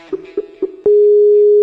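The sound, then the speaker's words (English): A Skype call tone while phoning someone: three short electronic beeps spaced evenly, followed by a steady, loud continuous tone that holds to the end, clear with no talking. “We're going to call him first on Skype, see if he'll pick up the phone from there.”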